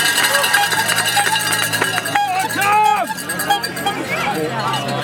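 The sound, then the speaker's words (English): Spectators at the UK National Hill Climb Championships ring cowbells in a rapid, continuous clatter as the last rider comes up the climb, amid a cheering, shouting crowd, with loud voices rising and falling over the metallic clanging throughout. “UK National Hill Climb Championships special | Cow bells, cut-off handlebars”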